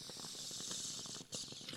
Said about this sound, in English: Okay, I'm going to rip the bong for that one. Because I love Pokemon Gold and Pokemon Silver.